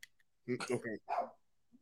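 A dog barks in a quick cluster of sharp, loud barks, then lets out one more after a brief pause, with quiet around it.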